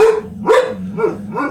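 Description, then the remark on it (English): A dog, Lucy, barks four times in quick succession, loud, each bark short and sharp with a slight yelping edge, in New York City. No one speaks. “Not by the dog, but someone outside the door.”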